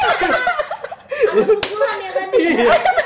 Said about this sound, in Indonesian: Pukulan ya tadi.